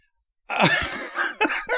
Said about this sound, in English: Oh my God! Now I'm coughing. See, you do have COVID.